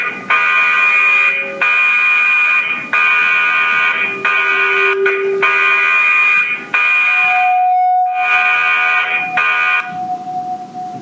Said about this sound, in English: That is the call that you will hear on a warship. As soon as that alarm goes off, the ship enters a natural state of flow. There's no panic, there's no shouting, apart from that very loud alarm, and the hum of machinery, the ship is quiet.